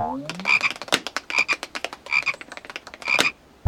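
A frog croaks in four quick bursts of rapid, rattling pulses with a clicky, trilling quality, fairly loud with no talking.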